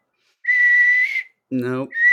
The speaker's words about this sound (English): Really, this is what we're gonna do? It's 10 minutes of fucking whistling into the mic.